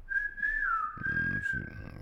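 A single long, shrill whistle blast holds steady for about two seconds with a slight dip in pitch, while a low, muffled voice-like rumble rises beneath it partway through.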